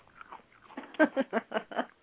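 Chewing on something crunchy, a quick run of about six loud, evenly spaced bites after a softer start, with no talking.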